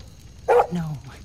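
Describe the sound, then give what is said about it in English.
A dog lets out one sharp, loud bark, trailing off into a brief lower, growly tail over a faint low hum. “The dog sensed something wrong and barked at him.”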